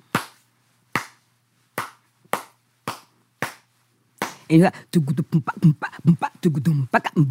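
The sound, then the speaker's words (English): Six sharp hand claps in a slow, steady beat, imitating the cowbell part of a traditional rhythm called the chow, followed by a voice speaking quickly over the final seconds. “Can you just clap out what that rhythm would be like?”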